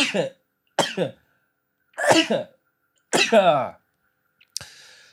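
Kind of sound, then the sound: human body sound, sneeze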